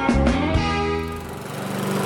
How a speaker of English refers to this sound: Oh, jeepers. I hate mowing the lawn over and over and over again.